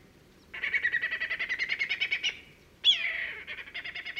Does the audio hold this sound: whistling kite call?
yes